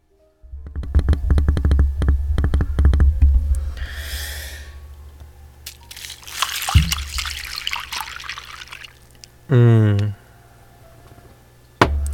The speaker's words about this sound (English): So I also have a glass of cold milk. Fresh and cold. So now's the good part. Now I pour the milk into the cereal.